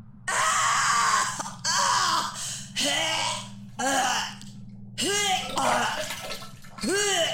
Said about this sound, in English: I was startled awake by ragged screaming coming from the bathroom down the hall.